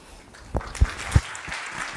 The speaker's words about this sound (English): Give Anika another round of applause.